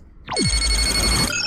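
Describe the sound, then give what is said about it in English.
A sci-fi style incoming hail chime: a quick descending sweep into a steady, loud ringing tone with bright layered high harmonics and a pulsing shimmer, cutting off after about a second. “Captain, we are being hailed.”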